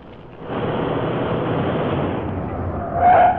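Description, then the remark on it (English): A car roars up with a rough, rushing rumble, then its tires let out a short, shrill screech as it brakes to a halt near the end. Fairly loud, with no voices. “Yeah, stop the car.”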